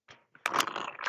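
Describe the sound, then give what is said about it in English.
Someone slurps a drink through a straw: a soft brief suck, a pause, then a louder, sustained, rattling gurgle of air and liquid lasting under a second. No one speaks. “Somebody took a sip out of a straw.”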